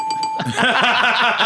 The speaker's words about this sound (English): You're gonna wear out that bell today, man.